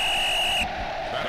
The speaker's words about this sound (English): Well, there's that whistle again, so we're almost out of time.